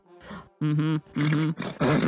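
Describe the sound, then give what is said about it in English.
A person vocally imitates a horse with a string of four loud, strained whinnying bursts, wavering in pitch and growing rougher and more nasal toward the end. “Confused horse sounds.”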